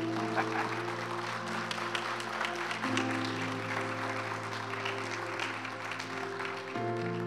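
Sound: audience clapping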